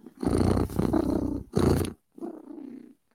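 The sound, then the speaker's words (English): A cat purring loud, a rumbling, rhythmic vibration in several long breathy bursts separated by short pauses, with the last stretch quieter than the rest. “I'm happy when I'm purring.”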